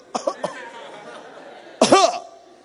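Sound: throat clearing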